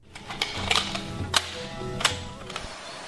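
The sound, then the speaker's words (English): A cassette tape is loaded into a cassette player: a series of sharp plastic clicks and clacks at uneven intervals over a low steady mechanical hum. “And take that one out of your butt and put that in the cassette player.”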